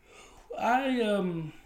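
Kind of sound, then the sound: human body sound, a person yawning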